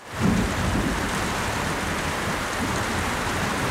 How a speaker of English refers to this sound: Uh-oh, it's starting to rain. I hope this doesn't spell trouble for my adventure today.